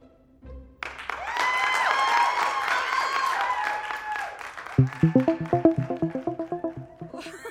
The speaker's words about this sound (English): That applause was a rush. Yes, I'm totally used to getting applause like that all the time.